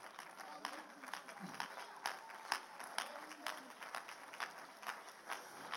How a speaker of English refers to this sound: Clap your hands again.